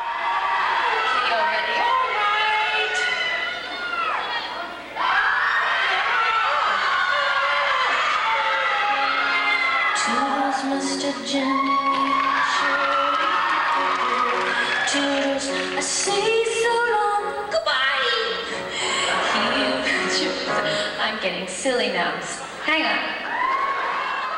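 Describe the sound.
A large crowd cheers and shouts continuously at a live concert recorded on June 6, 1996 at the Rosemont Theater in Chicago, Illinois, with whoops and overlapping voices rising and falling loudly throughout.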